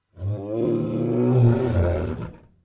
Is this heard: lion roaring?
yes